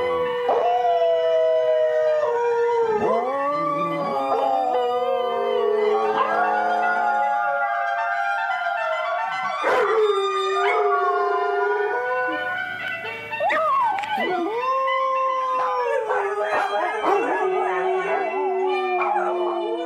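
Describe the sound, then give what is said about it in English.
Several dogs howl together in long, wavering, overlapping wails that rise and fall for the whole stretch, loud, with occasional yips breaking through and no talking. “Reason enough for us to celebrate that apparently lots of dogs are Sunday morning fans, too.”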